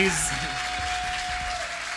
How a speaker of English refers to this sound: So just one more massive round of applause for this gorgeous fucking human over here.